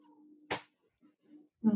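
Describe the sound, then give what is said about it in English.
A female pet cat gives a short, fairly loud meow right at the end, after a sharp rustling smack and a few faint murmurs in otherwise quiet surroundings. “Every time I've like tried to be on any sort of Zoom call or FaceTime call or anything, she just comes over and distracts me and meows.”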